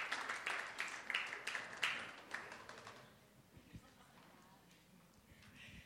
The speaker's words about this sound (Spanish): Un aplauso para mi querida esposa azteca saltillense.